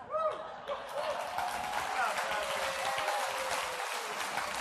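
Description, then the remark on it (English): An audience of people over the age of 45 claps steadily for several seconds, a dense, even wash of applause from many hands, with a faint voice briefly audible beneath it. “All those that are clapping, they're over the age of 45.”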